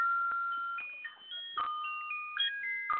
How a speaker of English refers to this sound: who's playing the Christmas music? I don't know. I hear it too. that's a little clock I have in my dining room here. Sorry about that. It goes off every hour. A little holiday card.